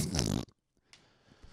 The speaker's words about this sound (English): Did the sand just fart?